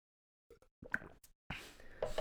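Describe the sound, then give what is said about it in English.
Someone takes a sip of water: a few short, wet gulping and slurping sounds, then a longer breathy exhale with faint liquid clicks. No one speaks. “Excuse me while I take a drink of water.”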